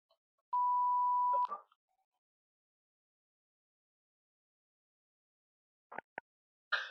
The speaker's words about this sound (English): If you're trying to reach me, you'll hear the beep. Leave a message, I'll call you back.